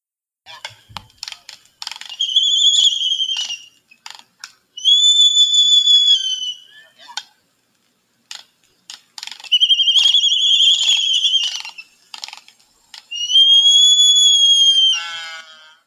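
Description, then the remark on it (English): An albatross sky call, given as the bird points its bill skyward and spreads its wings: bursts of sharp, rapid bill-clacking exchanged back and forth between birds alternate with four long, loud, high-pitched honking wails, each sustained for over a second. No one speaks. “So yeah, that last like honking so you can hear some of the sky calling in that in that audio, and then of course the bill vibration or bill clacking, it's called, back and forth to one another.”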